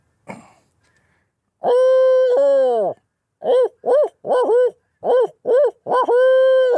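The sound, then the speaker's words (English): A person imitates an owl's hooting call: a long drawn-out hoot, then a rapid series of short rising-falling hoots, ending in another sustained hoot, loud. “Well, I want to hear your owl and your crow.”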